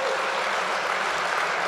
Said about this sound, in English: So you should applaud that too. Yeah, yes, applaud me being wrong, please, yes.